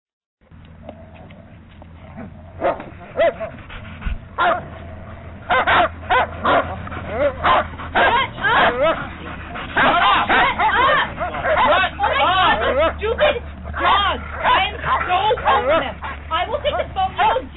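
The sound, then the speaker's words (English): Several dogs bark and whimper excitedly over a phone line, with yips and whines piling up into a near-constant chorus, some voices audible in the background commotion. “So that call, that transition with the dogs happened, you know, about 4 minutes into the call, and the entire call lasted about 8 minutes.”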